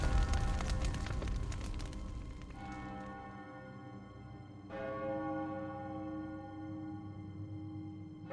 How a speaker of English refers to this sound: The town bell chimed loudly through the open window, ringing until it reached 11.